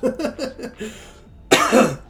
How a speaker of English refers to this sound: So of course, right away, like right as I'm about to like start, you know, I start coughing and choking on my water.